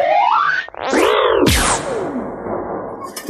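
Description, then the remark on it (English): A cartoonish fart sound effect with rising, bouncing pitch sweeps and a sharp falling swoop, loud, ending in a whooshy tail with no talking. “Well, we're going to follow up the fart noise talking about a tragic situation”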